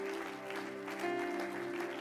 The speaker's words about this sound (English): One more time, clap your hands to Jesus.